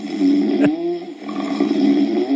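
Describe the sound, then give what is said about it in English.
A man's loud, rasping snore drones on continuously, rumbling low and steady, with a brief sharp snort-like burst breaking through early on. “there's no way I snore.”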